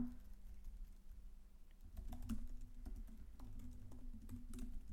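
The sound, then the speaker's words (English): Quiet, irregular clicking of keys on a computer keyboard, typed in short bursts over a steady low hum, with no one speaking. “I'm glad you're just going to have to edit through us like typing.”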